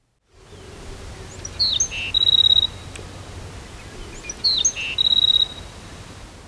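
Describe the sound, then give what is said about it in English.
A black-throated sparrow, a newly arrived spring migrant in a yard, sings two short, bright phrases, each a few clear notes ending in a buzzy trill, about three seconds apart over a steady background hiss. No one speaks. “This week, I had my first bona fide migrant arrive in the yard, a black-throated sparrow, which immediately began singing.”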